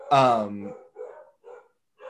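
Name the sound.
dogs barking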